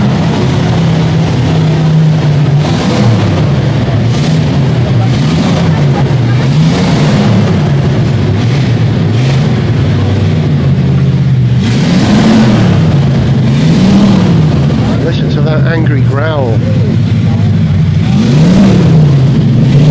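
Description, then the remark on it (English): A vintage car engine runs loud, its pitch rising and falling in repeated revs over a steady rumble, with faint crowd voices in the background. “There isn't a crowd around Babs, but there is a crowd around one of the other cars.”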